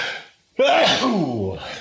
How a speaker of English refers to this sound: I have to sneeze.